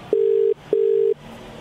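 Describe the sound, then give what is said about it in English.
A telephone ringing tone on the line: two steady, low electronic beeps in quick succession, separated by a short gap, clear and fairly loud with no voices. “It's ringing.”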